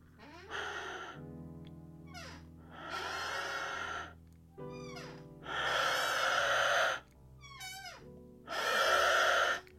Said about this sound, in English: Some depressing sounds. So there you go. That was the Aztec Death Whistle